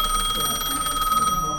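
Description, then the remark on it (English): A telephone in a dentist's waiting room rings with a steady, high-pitched electronic trill, its rapid warbling pulse sounding continuously and fairly loud for the whole moment. “The phone rings.”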